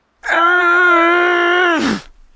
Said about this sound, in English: That's it. That's the scream he's been trying to remember. It was the scream he screamed when his lack of confidence in his great-grandfather brought about the end of the best time he'd ever known. The scream of not being able to make things right.